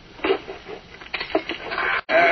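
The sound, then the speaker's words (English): A wooden chair in an office creaks and groans as someone sits down in it: a few short, scratchy creaks, then a brief pause and a longer, louder strained squeak. No one speaks. “This chair could use a little oil.”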